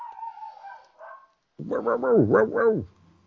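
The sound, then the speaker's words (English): A dog barks in a quick run of about four loud, tonal barks, preceded by a quieter whine-like vocal sound and a short pause. “He just barked and gave me a hamburger sandwich.”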